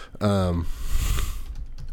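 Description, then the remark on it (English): A short burst of a voice is followed by the soft, rapid clatter of typing on a computer keyboard as a person types out words while saying them aloud, with faint scattered clicks trailing off near the end. “I'm saying out loud the words I'm typing out, and wow, I can't do both.”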